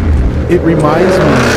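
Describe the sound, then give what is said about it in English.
A loud V8 engine of a 2018 Shelby Mustang revs up, its throaty roar climbing in pitch and holding steady for a moment before easing back, with a dense rumble throughout. “So we have a 2018 Shelby. It's not the same flat plane crank.”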